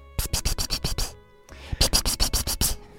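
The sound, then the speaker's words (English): Fingers rub together in quick, scratchy bursts, the kind used to call a cat: two rapid runs of about six crisp rasps each, split by a brief pause, with no talking. “And then I lift my head, and I rub my fingers together, and I make that little noise you make when you want a cat to come.”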